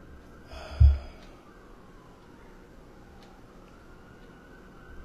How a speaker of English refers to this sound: As the fucking cop sirens start. Because of curfew.